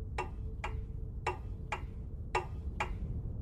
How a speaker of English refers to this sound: We wake up from some terrible sleep in a car park and check the Lord of Misrule's ticking clock. 36 hours, 5 minutes and 14 seconds to go. But now, it's not just a ticking clock.